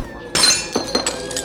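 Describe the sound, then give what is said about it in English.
A dropped glass bottle smashes with a sharp, bright crash, spilling all over the floor, followed by a few scattered tinkling shards and skittering fragments over the next second, fairly loud with no voices. “I dropped him, Nameless. Spilt all over the floor.”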